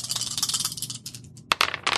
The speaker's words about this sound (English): How many 6s were in that when your initial attack roll? There were 2 of them. Two. Yeah. So roll 3 dice.